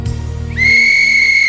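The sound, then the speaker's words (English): A referee's whistle gives one sharp, sustained shrill blast that starts about halfway through, loud, after a moment of low rumbling background noise, signalling five minutes to kick-off. “We actually have a bit of a 5 minute call, so warm ups, and then a whistle at 5 minutes to go.”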